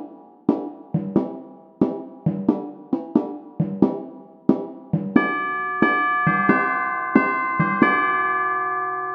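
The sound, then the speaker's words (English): A riff of struck, unusually high timpani notes in a quick, uneven rhythm, then tubular bells join with bright, ringing tones that sustain and overlap before cutting off abruptly. No voices. “Question four I've put is on unusually high timpani and tubular bells, finally.”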